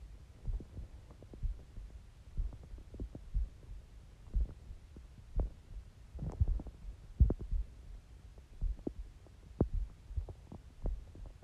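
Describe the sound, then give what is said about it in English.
Low, muffled thumps of a person's heartbeat pulse steadily, picked up by a microphone worn on the arm: a soft rhythmic throbbing under a faint hum, with no talking. “My microphone is catching my heartbeat.”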